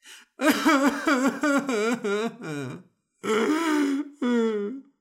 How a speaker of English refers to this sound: That is me bursting into tears.